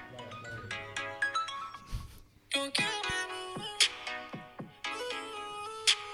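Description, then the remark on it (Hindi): A heavily auto-tuned song plays from a phone with a robotic, stepped vocal melody over a steady beat, sounding thin and tinny as if from a small speaker, with no one talking over it. “ये ज़्यादा auto tune नहीं हो गया भाई?”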